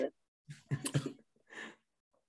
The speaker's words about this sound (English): Hey, son, you have to edit this out. I'm about to sneeze, bro. Oh, you good, man.